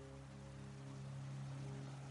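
Steady, even hiss of rain falling outside, constant throughout and fairly quiet, with a low sustained humming drone of tones running underneath.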